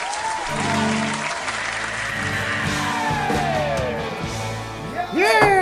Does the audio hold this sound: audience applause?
yes